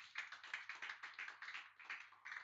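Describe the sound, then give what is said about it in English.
A group of people clap their hands for the Lord in a steady, quick rhythm, the claps blending into a continuous patter with no talking over it. “If I'm communicating, clap your hands for the Lord.”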